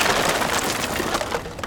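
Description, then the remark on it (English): A dense, steady shower of shattering glass and crashing debris as the third floor of a burning bank explodes, with many sharp scattered crackles packed together, fairly loud, lasting under two seconds with no voices. “The third floor exploded like a volcano, sending a shower of broken glass down like snowflakes.”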